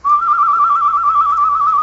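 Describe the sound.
A person whistles a bird call: one long, steady, fairly high note held for nearly two seconds with a slight waver, loud and clear with no talking.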